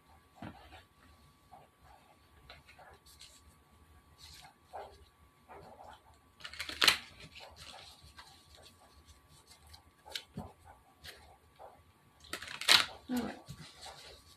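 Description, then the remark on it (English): A deck of tarot cards being shuffled, with one card in the deck flipped backwards. Soft flicking and sliding, with two louder riffling bursts partway through, quiet and steady throughout. “I've got a card that's backwards in there, like it's flipped up, so it's turned up as I'm shuffling.”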